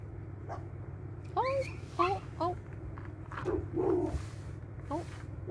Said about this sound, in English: We got something happening. We got two little dogs. Oh. She is beautiful. Which one? It's like a bulldog or something? It's some type of a bulldog, I think.